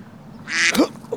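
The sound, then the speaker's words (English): A single loud, raspy duck quack rings out on a golf course, a harsh nasal burst lasting under a second, followed by a brief softer squawk. “Motherfucker, that fucking duck, dude.”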